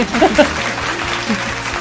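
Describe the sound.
A burst of crowd applause, a sound effect played on Channel Mom Radio: a dense steady wash of clapping that holds at an even, fairly loud level for the whole couple of seconds, with a few brief voiced whoops near the start.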